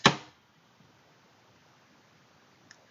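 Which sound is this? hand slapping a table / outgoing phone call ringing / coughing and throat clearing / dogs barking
hand slapping a table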